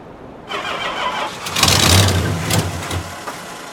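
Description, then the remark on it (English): An engine cranks as the ignition key is turned, a rough, grinding turnover that swells louder in the middle and churns on without catching, with no talking. “You've got power going to the engine, at least.”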